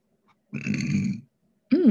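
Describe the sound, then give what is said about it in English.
One fairly loud, low, rumbling burp lasting under a second. After a short pause a voice starts speaking. “I don't know if you heard that, but I just burped.”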